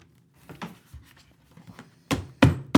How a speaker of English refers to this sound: There we go. I'm going to get kicked out of the hotel for banging this book against the wall.